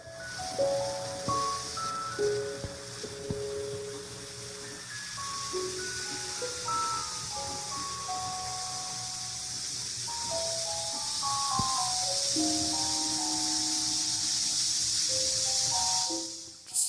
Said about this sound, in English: She's slowly letting the air out of the balloon.